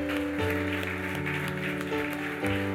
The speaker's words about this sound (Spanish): ¿Qué tal si le damos un aplauso de alabanza al Señor?